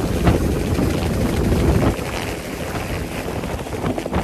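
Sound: helicopter flying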